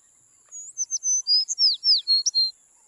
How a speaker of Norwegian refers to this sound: Ja, bare sett deg der på armen min, du. Sånn, ja. Ja, det fine fuglen, det. Fine fuglen.